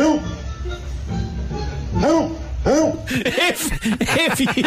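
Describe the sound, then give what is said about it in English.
A dog named Booger barks in a rapid run of short, vocal yelps that grow louder and more frequent toward the end, with people chuckling in the background. “The dog barks”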